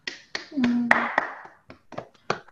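Soft, scattered golf claps, about eight sharp light pats at an uneven pace, with a brief low voiced hum under the early claps.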